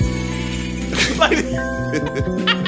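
Bright, chime-like tinkling tones ring over a steady sustained hum, resembling a wind chime, with a few brighter shimmering bursts partway through; moderately loud.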